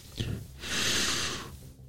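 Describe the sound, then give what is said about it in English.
A single deep, forceful inhale drawn in through the nose during a breathing exercise, airy and hissing, lasting about a second after a brief breathy onset, with no talking. “Let's start off with a breathing exercise because this is going to be some real alpha shit.”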